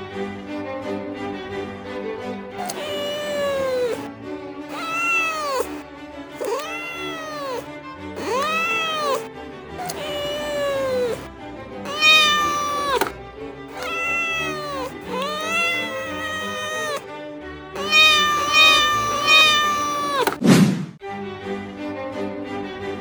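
A cat, Tibs, meows over and over, about ten long, drawn-out wailing calls that rise and fall in pitch, loud and insistent with short pauses between, ending in a sharp, abrupt cry.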